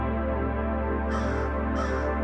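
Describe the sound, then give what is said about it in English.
Two harsh crow caws, played as a sound effect from a set of audio effects, sound in quick succession over a steady, droning background hum, each call short and rasping, with a brief pause between them. “They got crow.”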